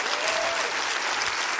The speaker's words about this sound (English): Clap your hands real big and say hallelujah to that.